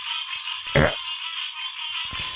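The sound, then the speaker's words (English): A loud, throaty frog croak breaks through a steady, buzzing night chorus, followed by a second rougher croak a moment later; no one speaks. “Stupid frogs.”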